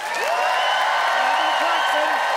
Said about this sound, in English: Gavin Clarkson, on behalf of hikers everywhere, versus Abdul Aziz and the gondolas, and it is up to the audience to decide by applause who felt that Gavin's hiking harangue talked the talk and walked the walk.